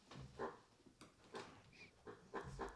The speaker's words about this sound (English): Where'd you find another squeaky toy? It's in the hedgehog.